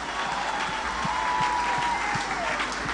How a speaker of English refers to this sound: Can you please clap hands like you're clapping hands for the daughter of Major One?